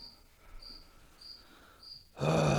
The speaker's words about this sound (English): Goddamn cricket. Bro, tighten up.